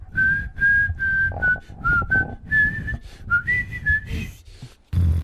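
A jaunty melody is whistled clearly and loudly, a run of sustained notes stepping up and down in a steady rhythm, with a low thumping backing beneath it.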